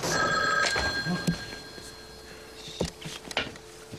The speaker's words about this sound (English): So they end up getting back way past dark, and they end up running back to the house because the phone's ringing, but they miss the call.